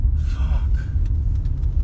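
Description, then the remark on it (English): A bus rumbles past, its deep engine drone steady and loud for a couple of seconds, with faint higher hiss and clatter from the street above it. “There's my bus.”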